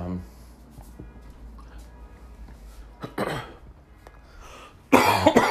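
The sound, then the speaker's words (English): Two sharp coughs break a quiet stretch, the first short and the second louder and harsher near the end, with faint background noise and no clear talking in between. “would not be an episode without me coughing.”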